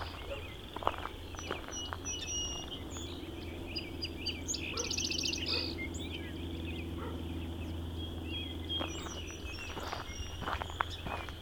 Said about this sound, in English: There's another song sparrow.